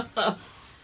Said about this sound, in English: And everyone pauses to drink. Yeah, you can hear the sipping. I can hear it in my headphones.